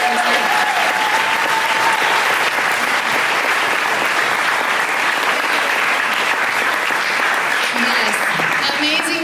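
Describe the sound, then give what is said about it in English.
A large audience claps steadily in a sustained round of applause to honor people who pray and serve, dense and loud throughout, with a few faint voices and cheers mixed into the clapping. “So will you bless them by just a round of applause?”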